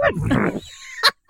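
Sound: voice imitating a horse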